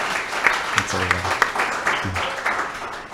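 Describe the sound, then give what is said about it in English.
An audience at a live talk applauds steadily, a dense wash of many hands clapping at once, with a few brief voices rising faintly beneath the sustained clapping. “Give yourselves a round of applause. Give Andy a round of applause.”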